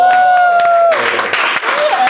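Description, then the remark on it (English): A held musical tone fades out as loud audience applause swells in, welcoming comedian Ed Gamble onto a show, a dense, steady clatter of clapping with some cheering, continuing to the end. “I always deserve a round of applause before a meal.”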